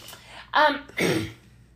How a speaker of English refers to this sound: All this coughing you're hearing, this is the best possible scenario. This is as good as it gets. The best of all possible worlds.